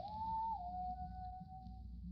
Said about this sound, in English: Suddenly, he whistled quietly.